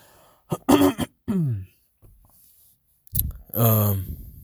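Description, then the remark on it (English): A man clears his throat and coughs several times in short, harsh bursts in the morning, around 8:30, with a brief pause before a final raspy throat-clearing grunt. No talking. “Fucking recording this right now, so my throat's all fucking all, I guess, closed up and shit. Or just, you know, morning coughs or whatever.”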